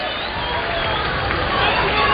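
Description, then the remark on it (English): A baseball crowd cheers a 101 miles-an-hour pitch speed after a first-pitch strike, in a dense, continuous roar of many voices, holding steady and swelling slightly louder toward the end, with no single voice standing out. “And they are cheering the pitch speed.”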